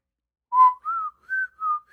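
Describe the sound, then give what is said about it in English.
A short whistled tune of four or five clear, sustained notes that rise and dip in pitch, fairly loud, starting after a brief silence with no talking. “Yeah, if they just whistled Cold Stone, I'd be fine with it.”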